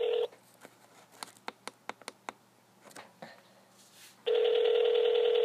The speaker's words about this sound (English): All right. We are calling Eric Wendell. He's not going to know it's you. It's going to come up Colorado. Doesn't matter. He answers the phone no matter what. He'll think it's work.